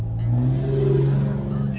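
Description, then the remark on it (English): A truck engine, not a V6, revs up loud, its low growl rising slightly in pitch and holding steady for a couple of seconds. “Get a real truck, son. I can't even tell. Just not a V6.”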